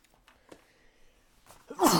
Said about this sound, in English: Sorry, just sneezed. I'm sorry if I just blew your eardrums out.